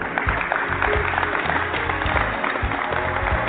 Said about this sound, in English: Workers at a warehouse in Olive Branch, Mississippi, applauding as the first pallets of Moderna's newly authorized coronavirus vaccine head for shipping trucks.